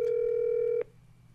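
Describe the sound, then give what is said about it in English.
A steady telephone dial tone as someone tries to phone a friend holds for just under a second, then cuts off abruptly, leaving only a faint low background hum. No one speaks. “I'm going to try to get him on the phone and see if if he remembers.”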